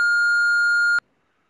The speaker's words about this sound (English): Answering machine type of beep, right? Call waiting beep.